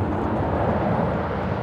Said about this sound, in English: At precisely the same moment, 12:40 local time in Paris, both supersonic jets begin to roll down the runway.